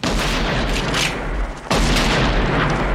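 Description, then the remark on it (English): A heavy shot from a .44 Magnum Automag pistol holding a 300-grain cartridge cracks out suddenly after a brief lull, its booming blast spreading into a dense, rumbling roar amid a continuous wash of loud noise, with no voices. “Well, this is the 44 Magnum Automag. And holds a 300 grain cartridge And if properly used, it can remove the fingerprints.”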